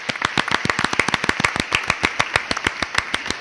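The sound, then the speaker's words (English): A short round of applause from what sounds like just a few people, with quick, sharp, uneven claps that stay steady at a moderate level for a few seconds, with no voices. “Should we do a round of applause to everyone now?”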